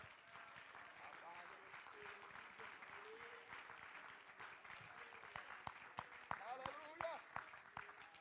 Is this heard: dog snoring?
no